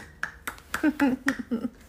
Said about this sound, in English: You're clapping for the story?